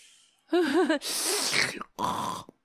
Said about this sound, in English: Who is, why is he breathing like that? Why, first of all, why is he breathing, really?